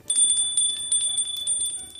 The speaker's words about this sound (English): Okay, hang on. Let me just ring the bell.